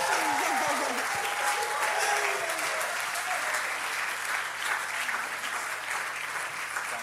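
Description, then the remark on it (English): Sustained applause from a large church audience standing to honour children for completing the year, a dense wash of clapping that holds steady and loud for several seconds, with faint cheering voices mixed in near the start. “Church, let's stand and give these a big round of applause for completing this year.”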